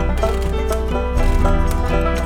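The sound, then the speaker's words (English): Steady, evenly paced clip-clop of horse hooves keeps time beneath a dense, sustained band of music, the clopping crisp throughout. “Horses, we're going down, down.”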